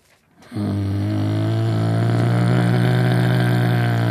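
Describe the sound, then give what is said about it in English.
A person uses their voice to imitate a car with a bad engine: a sustained low, buzzing drone that starts abruptly after a brief pause and holds steady and loud for several seconds. “It still sounds like a car.”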